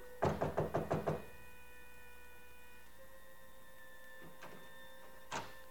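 A quick run of six firm knocks on the door of a suite, then a pause and two softer, separate knocks a few seconds apart, over a steady electrical hum.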